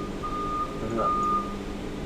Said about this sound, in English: Once that beeping stops, bloody trucks.